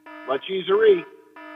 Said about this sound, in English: I never gave you a chance to use that Bury the Lead buzzer, but I'll give you a second chance here.